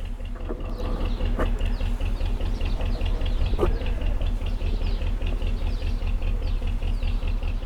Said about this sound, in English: we back onto the Regent's Canal, and although I can often hear people running on the towpath or arguing on the towpath when they banged into other people, this is the first time I've really been able to hear the manoeuvres of boats.